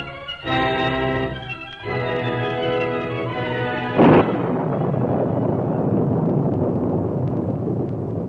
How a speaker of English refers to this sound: Jagged lightning streaked across the evening sky. Rain fell in torrents, and the wind howled across the desolate countryside.